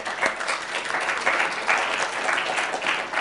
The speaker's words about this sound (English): I just think you owe yourselves a great round of applause for that.